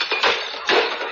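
Three dishes being juggled crash and shatter in two loud, quick bursts, each followed by a brief clatter of breaking pieces, with no voices.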